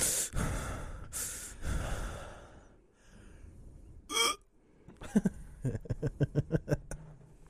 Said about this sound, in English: Am I breathing heavy? Or is it my headphones? Yeah, you need to stop.